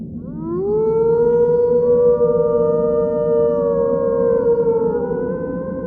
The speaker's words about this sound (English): The wind picked up, and with it, an eerie howl on its back. This was much closer than the howls I had heard in Marcel. The sound filled the night air. Then another cry came from the darkness.